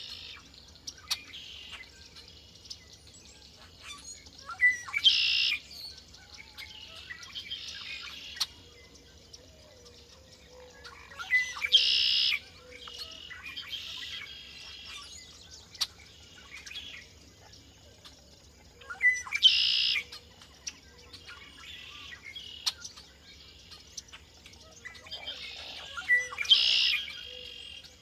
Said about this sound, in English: As I walk beyond the pools, I come across two male red-winged blackbirds singing exuberantly to defend their new territories among cattails at the marsh edge.